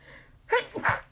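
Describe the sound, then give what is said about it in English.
A single sharp sneeze rings out, a brief tonal intake followed at once by a noisy burst, with no talking around it. “Gesundheit.”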